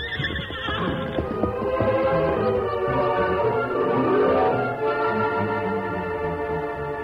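A horse whinnies loudly with a rising and falling neigh while hooves clip-clop in a steady rhythm underneath as the Lone Ranger rides it leisurely around the town jail, with no talking.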